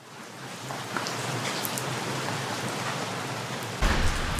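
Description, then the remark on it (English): Steady rain pours down outdoors on Ballarat Street, a dense continuous hiss with scattered droplet patter, swelling slightly louder near the end. No voices are present. “I stand on the rainy street. The rain has cleared Ballarat Street.”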